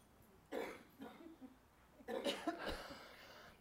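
Four harsh coughs come in two clusters, a rough burst followed after a short pause by a longer run of hacking. No one speaks.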